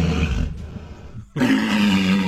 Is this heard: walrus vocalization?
yes